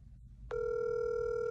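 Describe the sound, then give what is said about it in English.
An outgoing phone call ringing: a steady, buzzy electronic tone switches on after a brief low rumble and holds unbroken at an even level to the end. No one speaks. “Let's go ahead and call him.”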